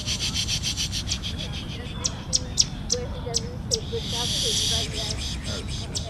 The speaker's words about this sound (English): As the group walks through Central Park, DeCanado plays bird sounds through a speaker.